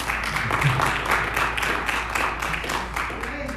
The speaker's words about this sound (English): Now, if you're happy and you know it, clap your hands.